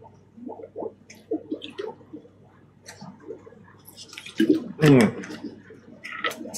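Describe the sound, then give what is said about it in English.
Sounds of someone drinking water: a series of soft wet sips and swallows, then a louder gulp near the end, with faint breathy noises in between. “I'm going to get a drink of water real quick.”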